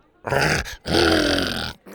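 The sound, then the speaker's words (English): A dog named Buck howls twice while tugging on a shirt with his teeth: a short, loud, wavering cry, a brief pause, then a longer drawn-out howl that bends in pitch before breaking off. “Buck howled and tugged on Bo's shirt with his teeth.”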